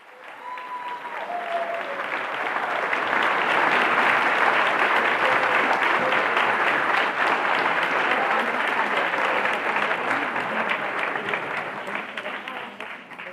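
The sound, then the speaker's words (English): Sustained applause from a large audience at an award ceremony as American artist Carolee Schneemann accepts the Golden Lion for Lifetime Achievement: a dense, steady wash of clapping that swells over the first few seconds, holds strong, then eases slightly toward the end. “We'll leave you with the celebratory sounds of American artist Carolee Schneemann accepting the Golden Lion for Lifetime Achievement.”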